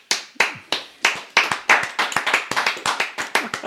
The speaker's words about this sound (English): You want to applaud Emma Gonzalez? How dare you?